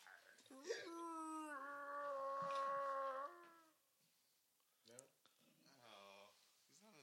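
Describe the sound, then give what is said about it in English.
A person imitates a bear growl with one loud, drawn-out voiced cry that holds steady for a few seconds, followed by quieter, brief vocal sounds. “Give us a growl.”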